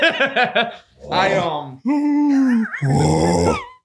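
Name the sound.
voice imitating loud snoring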